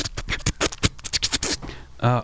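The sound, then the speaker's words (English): A mouth imitates paper being unfolded with a rapid series of crisp, hissy crackles and scratchy bursts, ending in a short voiced sound. “Was that your mouth as the paper sound for folding?”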